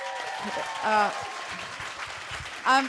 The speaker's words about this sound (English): And could I just say, could we have a big round of applause